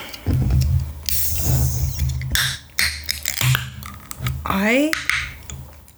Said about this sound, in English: Tell me why somebody's opening a can like that at 7 in the morning. What are you drinking? Oh, hell no. How do people have monsters at 7 a.m.?